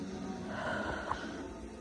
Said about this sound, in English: Oh my goodness. Mommy, you shouldn't be yawning. Come on. I can't help it.